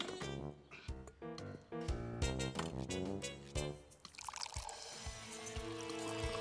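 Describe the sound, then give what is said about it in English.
Fresh, clean water pours in a steady, rushing stream during the second half to make coffee, following a stretch of bouncy, rhythmic music that continues faintly underneath. “It says here that the first thing we need is fresh, clean water.”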